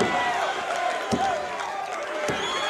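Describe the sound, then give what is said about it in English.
A large wrestling arena crowd roars and cheers steadily throughout a match between Jake the Snake and Corsario, a dense wash of voices, with two sharp heavy thuds cutting through about a second apart. “And listen to this crowd. They love it.”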